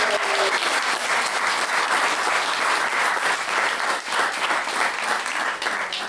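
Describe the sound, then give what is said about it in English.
Sustained audience applause, a dense, steady wash of many hands clapping at a loud, even level for several seconds with no voices standing out. “Big round of applause!”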